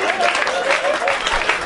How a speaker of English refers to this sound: Shut up. Stop it. Stop clapping.